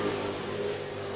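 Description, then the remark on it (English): A steady, loud engine drone with strong harmonic tones from Jarrett Bond's number 51 race car on its first lap of a WestCar race, holding a continuous roar for about a second with no talking. “13:358, the first lap for Jarrett Bond, the 51 car.”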